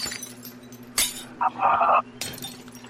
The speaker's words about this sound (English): Listen. I'm in the bathroom now. I swear to God. She has broke every piece of glass in this room.